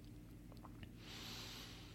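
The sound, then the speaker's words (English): A few soft, wet slurping clicks of someone sipping Oregon water, followed by a long, breathy exhale. Quiet, with no talking. “Nice, clean, refreshing second segment sip with Oregon water, which, by the way, oh my gosh.”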